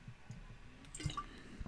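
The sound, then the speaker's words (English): Someone drinks water: a few soft, wet gulps and swallows at an uneven pace, with a brief slurping splash in the middle. The sounds are quiet, and nobody speaks. “Oh, man, can't get enough water.”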